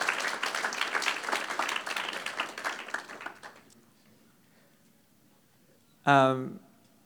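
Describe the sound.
An audience applauds a testimony in a dense, steady patter for about three seconds, the clapping tapering into near-silence before a single voice briefly speaks.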